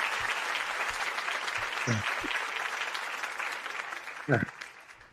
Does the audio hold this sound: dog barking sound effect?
no